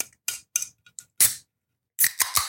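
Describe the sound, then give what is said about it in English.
A canned CBD drink containing 15 milligrams of CBD being opened: a few light metallic clicks, then a crisp crack with a short fizzing hiss, a pause, and three quick, sharp tinny knocks on the can. No one speaks. “Should we open it though? Yeah, listen to this.”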